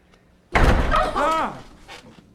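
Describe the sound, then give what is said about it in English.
A door bursts open without a knock with a sudden, loud bang, followed by a short startled vocal cry as the noise rings out and fades. “You just scared the shit out of all three of us? Hmm? You don't knock anymore?”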